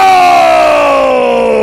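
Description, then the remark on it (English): A huge stadium crowd lets out a loud, sustained collective groan that slides steadily downward in pitch over a couple of seconds, as Jarvis Landry drops a spiral thrown by Cousins with about 1.5 seconds left. “He initially caught it. The crowd went wild! And then it slipped through his fingertips and onto the floor.”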